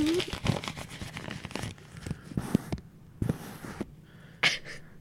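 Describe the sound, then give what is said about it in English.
Paper crinkles and rustles in irregular bursts as it is handled and unfolded, with a few sharper crackles and brief quiet gaps between the rustling. “Well, I guess let me check my future paper.”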